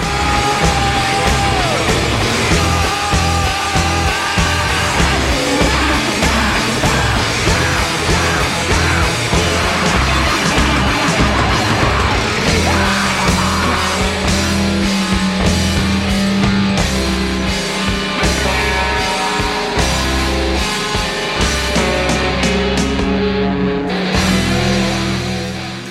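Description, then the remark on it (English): A loud, dense rock song with pounding drums and distorted guitars, a male singer screaming wildly over the driving band throughout. “And by the end, he's just screaming like a maniac.”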